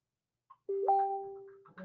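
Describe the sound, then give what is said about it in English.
A phone alarm sounds: a short blip, then a steady electronic chime tone that holds for about a second before fading, somewhat soft. “I have to go get my other phone because the alarm's going off.”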